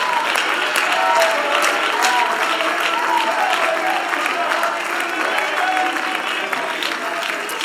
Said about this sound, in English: Oh, somebody clap your hands and shout unto God. Let's magnify.